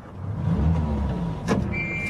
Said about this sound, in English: No, wait. Switch that engine off.